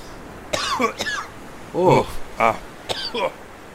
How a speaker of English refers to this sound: Hack. And my lungs ain't doing so well. Hack and cough.